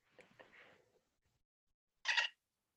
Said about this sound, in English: We've got Oh Yeah for Savvy, Dolphin Noise for Evan, and the Rasta Horn for Q.